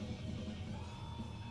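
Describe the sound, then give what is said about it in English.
Dense, distorted hardcore-style music with harsh screamed vocals, a steady wall of noise over a thick low end. It plays continuously at moderate volume with no talking over it. “Wow, they're really not going to say anything. It's really going to be screaming.”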